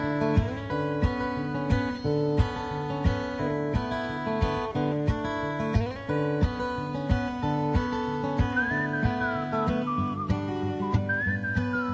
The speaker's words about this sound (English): Couldn't like cut the song and leave the whistling out. This is the live version.